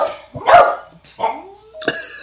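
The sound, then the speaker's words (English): Dogs bark in a quick, uneven series of sharp yaps, with a short whiny yelp near the end; no one speaks. “So distracted by the dogs.”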